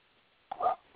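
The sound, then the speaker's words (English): A single short dog bark sounds once, a little muffled, over a quiet background with no one talking. “And so I'll apologize in advance for you hear dogs barking in the background.”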